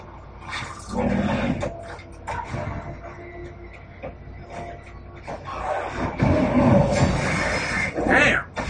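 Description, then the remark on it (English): A dog growls in low, rough rumbles, breaking into a few loud, harsh barks toward the end, without any talking. “But the damn dog is fucking me up.”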